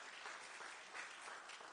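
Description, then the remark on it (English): An audience claps as praise to God during a sermon, a dense, continuous wash of applause, many hands overlapping with no distinct individual claps, sustained at an even level throughout. “Come on, give your neighbor, give a God a hand clap of praise.”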